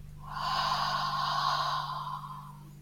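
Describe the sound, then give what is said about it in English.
A slow, deep breath in through the nose and out through the mouth, a soft airy rush swelling and fading over about two seconds, with a steady low hum underneath and no talking. “And one final time, breathing in deeply through the nose and out through the mouth.”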